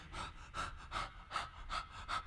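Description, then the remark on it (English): A person imitates a dog panting: six quick, evenly spaced breathy huffs with a slight voiced edge, fairly loud, with no talking. “there's Wrigley once again, nuzzling me, tongue hanging out, panting”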